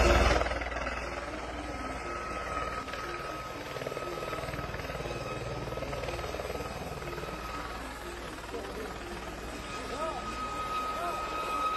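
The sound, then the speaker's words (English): A helicopter carrying a man arrives, its rotor and engine roaring steadily and loudly throughout, a continuous drone with indistinct voices faintly mixed underneath. “So anyway, I have a video of when a dude arrived in his helicopter.”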